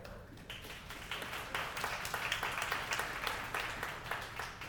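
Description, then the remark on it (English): Scattered, partial applause from an audience, a steady patter of many hands clapping unevenly at moderate volume for several seconds, with no voices over it. “That 50% clap might be representative of how it's viewed.”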